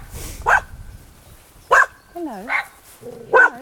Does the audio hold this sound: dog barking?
yes